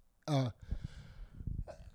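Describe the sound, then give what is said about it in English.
A single sharp, loud sneeze bursts out, followed by quieter conversational voices talking. “Bless you. Yeah, thank you.”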